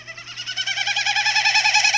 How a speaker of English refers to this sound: it beats its wings in a way that guides the air through the feathers, creating a winnowing sound. I'm just going to play it again and so that everyone can know that this is not coming from a bird's vocal box. It's coming from their wings.